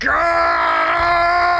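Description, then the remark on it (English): A man whose arm has been struck off lets out a single loud, sustained cry of agony, a strained, groaning scream held steady for over a second, with no other sounds. “As his arm flies off after your strike and the bits of his ribs and his innards just stream onto the ground beneath him and you, and he'll scream.”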